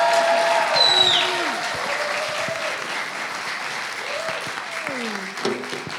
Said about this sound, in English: It means you've got to make those hands hurt, okay? So when you're gripping your knife and fork with your roast beef later, you go, ooh, I clapped a lot for Joe there. So should we give a massive round of applause for Joe Clark?